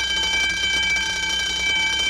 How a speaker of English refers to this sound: That doesn't concern me. The bell doesn't dismiss you.